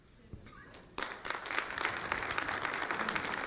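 An audience breaks into applause after a brief quiet moment, the clapping swelling quickly into a dense, steady patter of many hands that continues evenly to the end.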